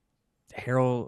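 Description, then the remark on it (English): A person briefly imitates a snore with a single voiced, nasal rumble after a moment of silence. “snoring.”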